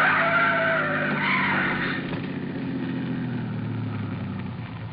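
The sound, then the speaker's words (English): Car tires screech loudly in a long, wavering skid for about two seconds as a car tries to squeeze between a trailer in front and an oncoming truck, then give way to a heavy, grinding rumble that slowly fades. No voices are heard. “The trailer in front of him. And the oncoming truck. Van Hook's trying to squeeze through. Pull up. Pull up, or we'll...”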